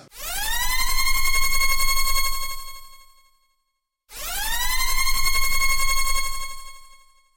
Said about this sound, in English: Sound the spoiler klaxon.